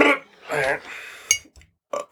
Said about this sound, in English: I could not burp properly. It almost came up a little bit.